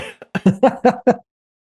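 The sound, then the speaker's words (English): A quick run of about five or six harsh coughs in a rapid burst lasting around a second, loud, then silence. “Oh, I got a cough.”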